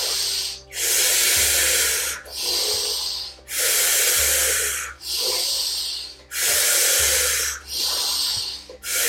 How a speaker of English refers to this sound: Only about 5 more rounds of this active breath in and out.